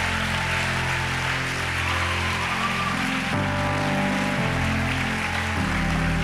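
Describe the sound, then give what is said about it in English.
A crowd claps steadily throughout, a dense wash of applause that never lets up, with sustained musical tones playing underneath and no one speaking. “All right, so if you guys will clap one more time, everybody who just made that decision, if you'll just go through those doors.”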